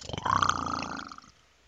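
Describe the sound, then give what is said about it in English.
A person imitates a lion's roar with one short, forced, throaty growl. It swells quickly, holds for about a second, then trails off, with no other talking. “Roar.”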